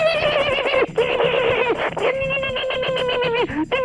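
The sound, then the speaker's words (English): A person makes loud, high-pitched chipmunk sounds: squeaky, warbling chatter with a rapid trembling quality, running almost continuously for about four seconds with a few brief breaks. “Okay, let's knock off the fucking chipmunk sounds.”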